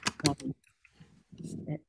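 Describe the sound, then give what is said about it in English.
Quick clicks of typing on a computer keyboard in two short bursts with a pause between, moderately loud, with some muffled background noise mixed in. “And is that typing?”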